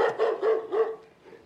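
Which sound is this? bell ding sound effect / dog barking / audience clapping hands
dog barking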